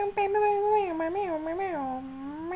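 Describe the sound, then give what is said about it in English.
A voice imitates an air horn with one sustained, nasal, mid-pitched tone that wavers up and down and dips at the end, coming out more like a drawn-out meow. “They're sounding more and more like cat noises. And less like air horns. It sounds like you're meowing right now.”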